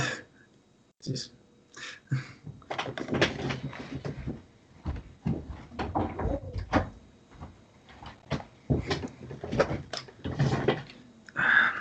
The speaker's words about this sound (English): sorry, I'm gonna just close my door here.